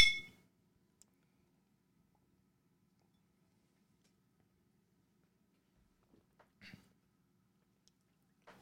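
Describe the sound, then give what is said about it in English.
Glasses of double mellowed Tennessee whiskey clink together once in a toast at the very start with a short, bright ring, then quiet follows, broken only by a few soft taps and knocks. “Cheers.”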